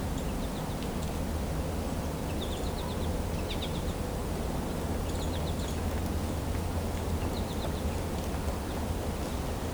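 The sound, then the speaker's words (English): Several American goldfinches, a downy woodpecker, a red-bellied woodpecker and a Carolina wren call, short clusters of high chirps popping up every few seconds over a steady outdoor rustle and low rumble. “Several American goldfinches here. There's also downy woodpecker, red-bellied woodpecker, Carolina wren.”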